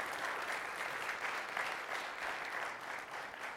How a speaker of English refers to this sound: The young lady that sang this morning, can we give her a round of applause? I don't even know if she's here right now.